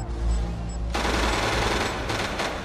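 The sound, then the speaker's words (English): A low rumble gives way to a loud, dense burst of rapid gunfire that keeps rattling on, with a few sharper cracks standing out near the end. No one speaks. “I'm hearing gunfire.”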